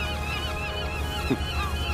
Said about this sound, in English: Listen, can you hear the seagulls shrieking? That means we're getting closer to the harbour.